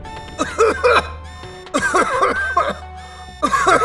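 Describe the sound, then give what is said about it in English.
Loud coughing, brought on by a smell of rotten eggs, comes in three harsh fits, each a quick cluster of hacking bursts, separated by short pauses over a steady low background hum. “I took a step towards it, and the smell of rotten eggs filled my nostrils. I coughed loudly.”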